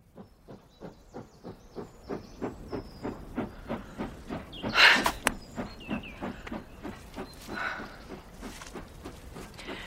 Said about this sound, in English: It's just as Miss Marple said. The train slows down to make the curve and the embankment falls steeply away.